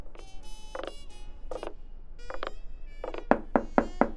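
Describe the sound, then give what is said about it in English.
Four firm, evenly spaced knocks on a door arrive near the end, sounding distinct over a backdrop of warbling, tonal music-like sounds. “Alright, who could this be? I know I've been late on the rent, but I should be good. Door's open.”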